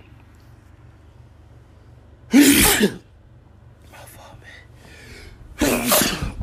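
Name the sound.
repeated sneezing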